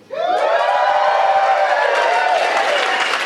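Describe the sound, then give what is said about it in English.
A live audience at the Austin Film Festival cheers loudly, a dense wash of whoops and shouting voices mixed with clapping that swells in quickly and holds steady for a few seconds. “This podcast episode is recorded live at Austin Film Festival.”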